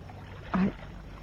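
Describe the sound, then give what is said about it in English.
A small boat, handled by Cannon, moves through water: a steady low wash of ambient noise, broken by one brief, louder splash or creak midway, with no voices. “I didn't know you could handle a boat, Cannon.”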